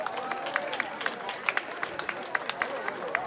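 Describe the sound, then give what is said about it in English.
An audience at a Man of the Year event clapping as the honoree thanks people on stage: a steady stream of sharp, scattered claps at a moderate level, with a low murmur of crowd voices underneath throughout. “As he thanked the appropriate parties, they clapped.”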